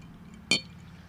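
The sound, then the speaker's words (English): A single bright clink of two glasses touching in a toast, sharp and ringing with a quick decay, against a quiet background. “This week, and should we cheers?”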